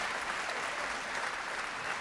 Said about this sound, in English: That deserves applause.